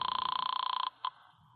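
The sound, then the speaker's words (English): A telephone rings with a bright, rapidly trilling bell for just under a second, then gives one short clipped chirp before falling quiet. It is loud, with no one speaking. “I grabbed it and picked up the phone.”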